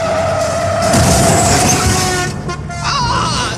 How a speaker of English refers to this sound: he mashes on the brake and breaks the door off of the Jaguar